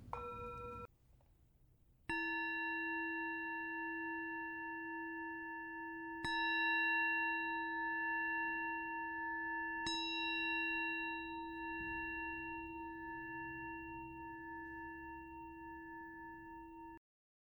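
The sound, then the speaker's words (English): A meditation bell is struck three times, a few seconds apart, each clear strike ringing on in a long, steady, shimmering tone that overlaps the next. No one speaks. “And with the sound of the bell, opening your eyes if they've been closed, or gently raising your gaze.”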